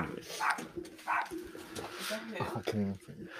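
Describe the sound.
A dog named Princess barks a couple of times in short, sharp bursts, followed by other muffled, voice-like sounds in the background.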